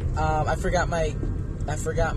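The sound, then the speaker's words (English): A steady low rumble of car interior driving noise runs throughout, with a person talking over it while driving. “Right now I'm driving.”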